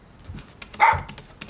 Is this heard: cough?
no